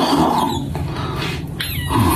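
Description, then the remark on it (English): A small squeaky fart: a steady, reedy squeal with buzzy low tones underneath, holding for about two seconds at a fairly even loudness, with no talking over it. “Aw, I think that was a little fart squeaking out.”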